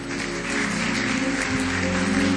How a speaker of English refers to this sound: That's a good place for you to clap.